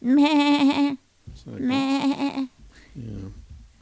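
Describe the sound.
A person imitates a goat with two loud, wavering bleats, each about a second long and separated by a short pause, followed by a softer, lower vocal sound.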